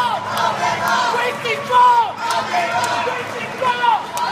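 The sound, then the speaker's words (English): A crowd of voices shouts and chants together in rising, rhythmic bursts, loud and energetic, with one voice, an enthusiastic supporter from Camden, leading the cheer before a campaign event in New Hampshire. “Here he is leading a cheer before a campaign event in New Hampshire.”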